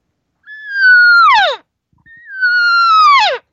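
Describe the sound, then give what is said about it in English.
Two drawn-out, whiny elk cow assembly calls made by a human voice to invite a bull elk over, each starting with a steady nasal tone and then sliding sharply downward, separated by a short pause, loud. “Give him that one sound, which I told you, which is asking him. It's an assembly.”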